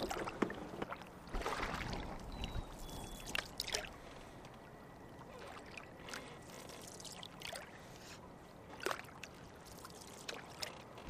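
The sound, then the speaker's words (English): Paddle strokes dip and splash as a canoe moves through the water of Bubbly Creek, on the south branch of the Chicago River, with soft trickling and gurgling between irregular strokes and no voices. “So this canoe is just a bit tippy. We should get in one at a time, and when you get in, you know, keep your center gravity.”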